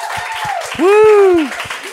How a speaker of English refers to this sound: Yeah. It's a round of applause.